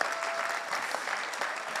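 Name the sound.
audience applauding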